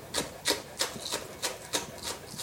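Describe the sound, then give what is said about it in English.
A knife chops food on a cutting board in a quick, steady rhythm, about eight crisp, dull taps spaced evenly apart, with no talking. “See, now I'm chopping faster, and I'm really probably getting pieces that are bigger than what I really want.”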